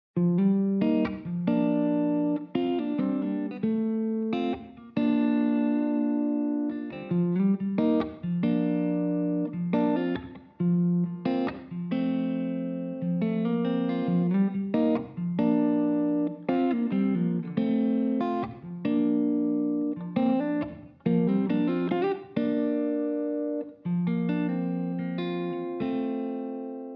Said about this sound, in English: And my close mic sound, I've taken out a little bit of bottom and top to make this guitar feel like it's pushed back into the room.